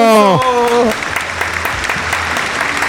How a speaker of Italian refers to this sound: Applausi.